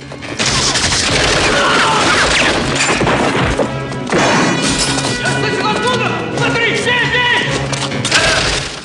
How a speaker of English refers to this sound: Rambo fires on guards as they enter the prison.